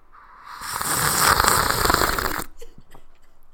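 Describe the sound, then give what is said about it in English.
A loud, drawn-out slurp of tea, a hissing, bubbly suck of air and liquid lasting about two seconds, then a few faint clicks and swallowing sounds in the quiet. “I will now slurp my tea.”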